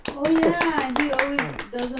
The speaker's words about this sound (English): Clap, everybody.